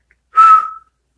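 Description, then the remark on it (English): A single short whistle from a person, one steady breathy note lasting about half a second, fairly loud with no talking around it. “Why did I just whistle?”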